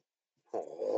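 A dog gives a low, rumbling growl that starts abruptly after a moment of silence and holds steady, fairly loud, with no one talking.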